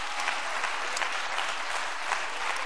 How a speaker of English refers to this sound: Somebody clap your hands to the Lord if you believe that.